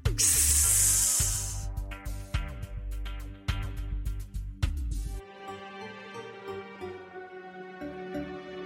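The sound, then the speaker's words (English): A loud, sharp snake hiss bursts out for about a second, then gives way to plucked, rhythmic music that settles into a sustained, softer melodic passage. “You see, dear listener, Glen Innes at this time of the year was well known for its unusually high population of deadly red-bellied black snakes.”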